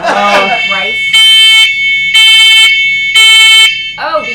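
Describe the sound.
A fire alarm, set off by someone vaping underneath it, blares three loud, piercing beeps in a steady rhythm, each about half a second long, with brief voices talking just before and after.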